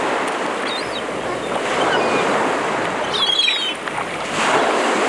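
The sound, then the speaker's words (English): Seagulls call in short, squabbling bursts above a steady roar of waves breaking on an ocean beach, their cries sharp against the continuous wash of surf and a touch of wind. “Those seagulls sound like they're fighting for food.”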